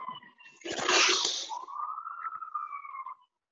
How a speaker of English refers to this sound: Snap ambulances, Jesus. It's just loud.